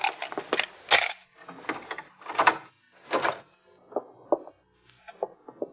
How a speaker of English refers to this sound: You have a pass key? Yeah. All right, open the door.